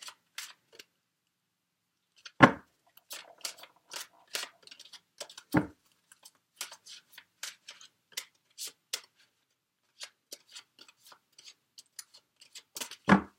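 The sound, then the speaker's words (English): A deck of tarot cards being shuffled during a tarot reading in Santa Barbara: quiet, irregular crisp clicks and flicks of card edges, broken by three heavier taps as the deck is squared, with no talking. “Sorry, I'm just taking in the energies for you while I shuffle, Aries.”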